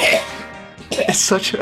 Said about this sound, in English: I'll just cough. That always works.